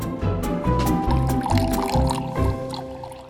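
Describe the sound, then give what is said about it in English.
A drink is poured into a glass, a steady gurgling stream with rising pitch as the glass fills, lasting a few seconds before tapering off. “So let's pour you another drink.”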